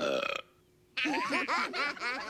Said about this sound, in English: Yeah, well, I won the belching contest at work.